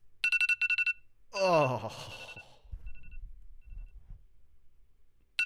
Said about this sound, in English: like when I'm my phone alarm going off, that's what I'm listening to.